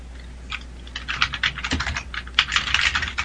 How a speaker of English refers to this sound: Did you post? I was about to. I just finished typing.